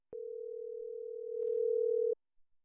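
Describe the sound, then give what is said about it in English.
A phone call's ringing tone as someone calls a friend: one steady, clear electronic beep holding for about two seconds before cutting off, followed by quiet with a couple of faint soft sounds. “See if he picked the phone.”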